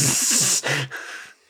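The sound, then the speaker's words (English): A person mimics a cat's hiss: a loud, breathy hiss lasting about a second, then a shorter, softer hiss trailing off. “that girl who's going to hiss at him when she first sees him.”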